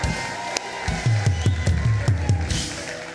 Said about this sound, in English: Come on, somebody, give the Lord a clap.